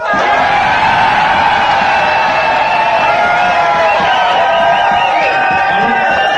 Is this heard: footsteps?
no